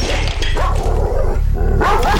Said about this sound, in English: a massive mangy dog appears and sprints down the hall, charging at Dexter